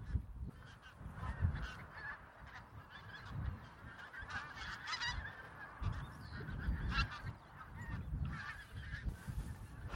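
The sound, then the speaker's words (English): Thousands of pink-footed geese call continuously across a marsh, some flying overhead, many overlapping high honks blending into a steady chorus over a low, gusty wind rumble. “The call of wild geese, pink-footed geese, which there are thousands here, I think, out across this marsh.”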